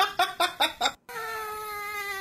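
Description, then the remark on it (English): Farting noises from a clip being played, with no voices: four short, rhythmic, buzzy bursts, a brief silent gap, then one long, steady, tonal fart that holds its pitch to the end. “It's just farting.”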